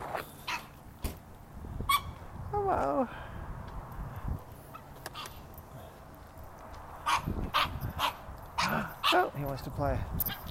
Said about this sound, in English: He wants to play. You want to play with a little puppy?